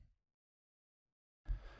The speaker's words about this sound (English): Did they put a mic in his nose? Guy was breathing heavy. He was breathing hard. Guy was breathing. The man was breathing.